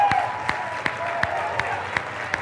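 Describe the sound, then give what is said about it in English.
An audience at an Easter church service cheers for God and applauds, a dense wash of clapping and voices with sharp, evenly spaced claps punching through in a steady rhythm, a little under three per second. “So I'm going to count down from 3, and then we're going to cheer for God.”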